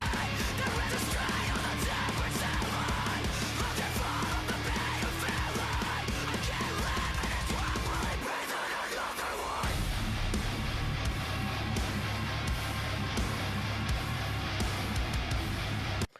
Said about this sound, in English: It's heavy. It's got this sick breakdown here.